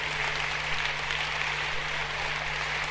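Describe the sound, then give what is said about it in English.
An audience claps steadily, the dense patter of many hands blending into a continuous wash of applause that holds an even level throughout, with no voices standing out. “I'm watching those who are not clapping.”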